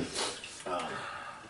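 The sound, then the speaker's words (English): A couple of quick, wet sniffles after eating a spicy dry-rub wing, one near the start and another a moment later, each a short breathy rush of air, followed by softer hissing breath. “We're making noises. We're fucking sneak. We're sniffling.”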